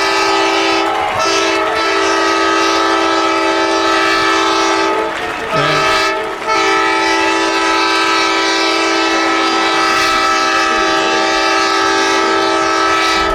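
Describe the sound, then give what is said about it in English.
A loud foghorn blares in one long, steady, unbroken tone for the whole stretch, with a couple of brief wavers partway through. It is deep and sustained, sounded at a college baseball game to celebrate freshman catcher Andrew Stanley's home run over the left-field fence. “And as soon as the foghorn goes back into oblivion, I will give you the fact that that is Stanley's first collegiate home run.”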